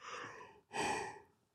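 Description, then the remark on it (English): A person yawns mid-sentence in two drawn-out breathy phases, a long airy inhale followed after a brief pause by a fuller, voiced exhale that trails off. Fairly quiet, with no talking. “Great timing for me to yawn. Yeah, mid-sentence yawn.”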